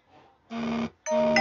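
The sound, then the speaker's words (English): A notification chime plays two sustained electronic tones in quick succession, the second brighter and higher, sounding clearly over a faint low murmur, like a two-note doorbell-style alert. “Huh, got a notification there.”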